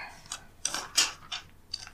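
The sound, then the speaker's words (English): Paper rustles in a few quick, irregular crinkling bursts, fairly quiet, with no voices. “Sorry about the paper.”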